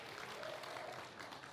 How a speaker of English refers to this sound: Now you clap for them.